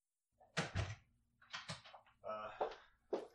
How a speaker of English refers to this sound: Did you just hear someone knocking? Yeah, is there a surprise guest coming? I think so.